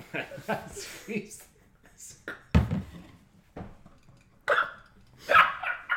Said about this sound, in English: just farted out his water bottle. You're not allowed to have any props. No props. We said no carbonated water, and you still found a way to fuck it up with regular water.